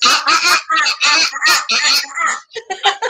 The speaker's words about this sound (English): Be careful when the birds fly over. You don't really want to be doing that. We've been warned.